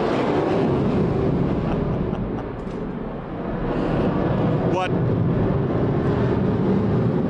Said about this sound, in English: That was an F-35 that just went by, and you know it's an F-35 because you shake from the inside out when the airplane goes over.